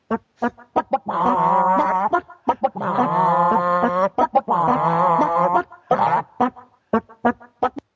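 Rhythmic chicken clucks and drawn-out squawks pattern out a melody, with short staccato clucks giving way to long, strained tones in a tune-like sequence, close and fairly loud.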